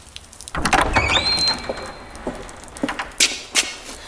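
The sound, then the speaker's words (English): A door is opened with a scrape and a thin, rising hinge squeal, followed by a few soft knocks and clatters. No one speaks. “Allow me to eradicate the door for your kind person.”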